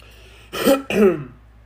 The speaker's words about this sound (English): Sorry, I'm coughing a lot, guys. When I did the sports podcast, I wasn't coughing this much.